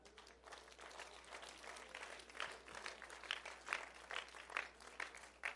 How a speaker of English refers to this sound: Yeah, I know we can all sit and clap for them.